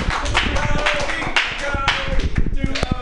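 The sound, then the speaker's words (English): An audience at a live Mutiny Radio broadcast claps steadily for about three seconds. It is a dense, continuous patter of many hands at an even loudness, with some voices mixed in underneath. “No, fucking stop clapping.”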